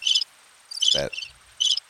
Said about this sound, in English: That should have been a cricket.